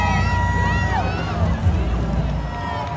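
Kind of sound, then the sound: crowd, children cheering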